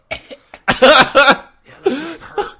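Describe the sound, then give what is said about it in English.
A person coughs several times after straining their voice doing a gravelly character voice: a few small hacks, then two loud harsh bursts, followed by raspy, throaty coughing with a strained voiced edge. “Need a cough drop.”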